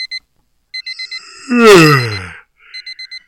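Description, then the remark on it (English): An electronic alarm clock beeps in rapid, insistent bursts of four, broken midway by a loud, drawn-out falling yawn or groan before the beeping resumes. “The alarm continues to go off.”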